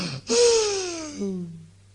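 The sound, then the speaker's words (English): A person gives one long, exaggerated yawn, a breathy intake that slides down into a falling groan and fades out. No words are spoken. “And then some of you yawn.”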